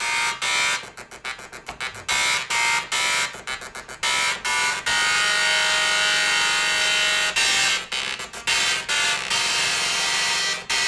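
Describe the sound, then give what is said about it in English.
A dot matrix printer, programmed to play a full-length song, screeches and buzzes out the tune, its harsh mechanical whine pulsing in stuttering rhythmic bursts, then holding longer sustained passages. Loud, with no talking. “You're hearing it, guys. … on the dot matrix printer.”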